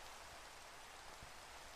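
Steady rain falls in a continuous, even hiss, with a couple of faint low thumps of drops landing; no voices, just the soft, constant wash of rainfall.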